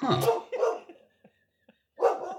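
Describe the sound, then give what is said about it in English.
A dog barks a few times in short, sharp bursts, with a brief pause before a final bark, clear against a quiet background. “And we got dog in the background.”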